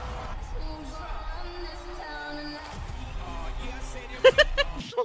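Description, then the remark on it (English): A crowd shouts and cheers at a Groundhog Day gathering for Punxsutawney Phil, with men in top hats present, in a dense, continuous wash of overlapping voices, with a few sharp, loud bursts close together near the end. “There's a crowd. There's shouting. There's cheers.”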